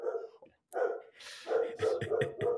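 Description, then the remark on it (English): A dog barks excitedly in quick, repeated loud bursts, with a brief pause early on before a rapid string of yappy barks. “Sorry, my dog's just going crazy.”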